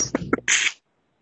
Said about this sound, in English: I'm going to take the liberty of muting whoever that was. Let's see. Oh, I can't find you. Bless you, Gesundheit.